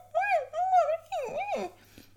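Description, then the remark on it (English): A person imitates the dog Freddy whimpering while walking around: three drawn-out, high, nasal whines that rise and fall, fairly loud, each lasting about half a second, with no other talking. “So on Wednesday, Roy tells Shona he barely slept because Freddy is walking around going...”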